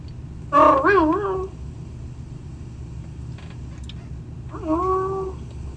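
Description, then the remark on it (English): A person imitates a cat's meow twice, first a long wavering yowl, then a shorter, softer one after a pause, convincingly catlike over a low steady background hum. “Is that, is that the cat or you? That's me.”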